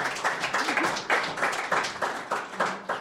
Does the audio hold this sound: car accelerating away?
no